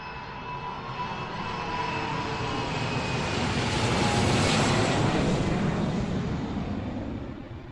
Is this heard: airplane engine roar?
yes